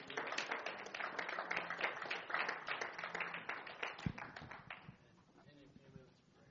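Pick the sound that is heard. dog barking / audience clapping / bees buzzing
audience clapping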